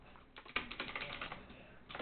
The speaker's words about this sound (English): Sorry for the typing.